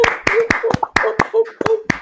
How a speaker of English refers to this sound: Round of applause for this gentleman.